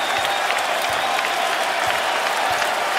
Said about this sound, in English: And most of the crowd here at the Garden on their feet, a final standing ovation.